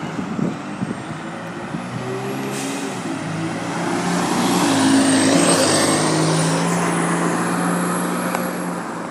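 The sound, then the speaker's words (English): A city bus engine rumbles with a steady low drone, rising slightly in loudness, while a hissing burst of air brakes cuts through partway along. “And that's the bus I need.”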